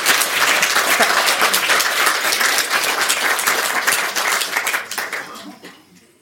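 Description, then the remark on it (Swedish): A crowd applauds steadily, a dense wash of many hands clapping at once, holding loud for several seconds before thinning out and fading away at the end. “Nu får ni applådera.”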